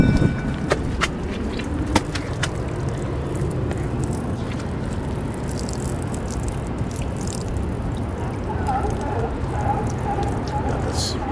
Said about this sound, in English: Water flowing here onto the rock. A little waterfall here.